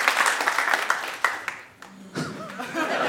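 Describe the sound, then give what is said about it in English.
A live crowd at the show Do Go On at 229 The Venue in London claps steadily and loudly, the dense patter easing briefly before swelling again, with a few scattered whoops and laughs mixed in near the end. “Give me a round of applause if you've ever heard our show Do Go On before.”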